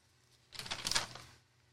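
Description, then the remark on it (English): A short burst of crisp, crackling rustling of paper being shuffled or crumpled, swelling for about a second and then fading out, with no one speaking. “You've more than aware that during this podcast, there's a lot of paper being played with. That is me.”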